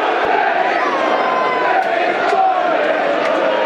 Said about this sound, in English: Haven't heard that one for a long time. From old school chants, making a comeback. Always welcome, old school chants.